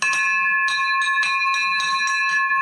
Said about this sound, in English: There it is. There's a bell for every thousand you made.